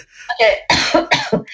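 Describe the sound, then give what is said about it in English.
A loud fit of coughing from a person who feels something like a hair in the back of the throat: four or so harsh, rapid coughs in quick succession, each a rough burst of breath and voice, with no talking over them. “Well, while you're coughing, you can cough. Keep coughing.”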